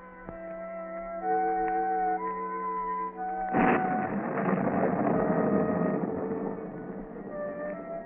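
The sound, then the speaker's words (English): A sustained, droning musical chord gives way midway to a sudden loud crash of thunder from a lightning storm, followed by a steady, heavy hiss of torrential rain at night over a stone county courthouse in a southwestern state, as the tones continue underneath. “The rain beats down in torrents, and during the brief flashes of lightning, a certain stone building stands out in the darkness of the night, the courthouse of a county in a southwestern state.”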